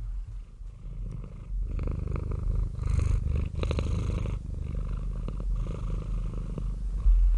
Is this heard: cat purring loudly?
yes